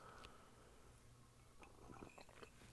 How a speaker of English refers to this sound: But it kind of, I've seen people do this type of pencil sketch, and that it kind of has all of Brooklyn on this big fat mug of green and echinacea tea that I'm sipping on for you guys. And it's an amazing cup of tea. I gotta say that.